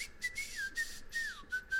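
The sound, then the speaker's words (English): A person imitates a whistled tune up close, a thin steady tone sliding gently between a few notes, with breathy puffs of air punctuating the short melody. No one talks. “All I remember is the whistle.”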